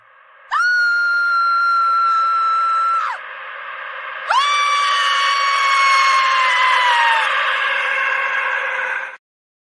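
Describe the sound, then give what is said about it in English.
Two long, loud, high-pitched screams from a short promo video being played, the first about three seconds and the second longer and slowly falling in pitch, over a steady noisy background with no talking. “I picked out the screams.”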